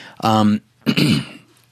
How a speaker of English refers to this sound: I apologize, everybody. I'm going to be clearing my throat from time to time. I'm still getting over my cold from last week, so hopefully you'll bear with me.